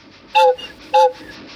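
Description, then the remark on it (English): A big toy train sounds two short, bright whistle toots about half a second apart, loud, over a faint steady background rumble. No one speaks. “Okay, seriously though, why is there a massive toy train?”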